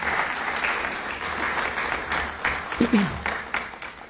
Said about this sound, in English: And we propose to do this without any new taxes, no reduction in city services, and no layoffs. You can clap for that.